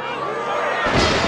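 A thrown cobblestone strikes a car during a bicycle race with a single loud, hard bang, rising suddenly out of a steady background of crowd noise and commotion.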